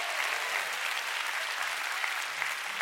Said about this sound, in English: Come on, church, give the Lord a big clap.